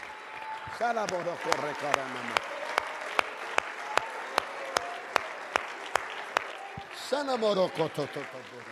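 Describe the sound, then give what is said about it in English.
A church crowd claps hands for 46 people who attested to miracles, in a steady, even rhythm, sharp claps landing about twice a second over a constant murmur, with a voice speaking or calling out at the start and end. “Somebody clap your hands for 46 people.”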